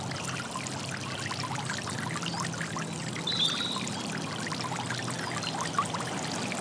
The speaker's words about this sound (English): In the distance, you see a beautiful waterfall. You start walking towards this waterfall and begin to feel the mist on your face and hands as you approach it. You can now see the water bounce off the rocks and bubbles of air, large and small, popping